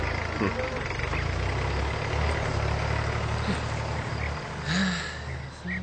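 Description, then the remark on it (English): A tractor engine drones steadily and loudly, a low rumbling idle, with a brief higher whine rising near the end. “Understanding an international word like that is, of course, made easier if you have a sound to go with it, like the tractor, say.”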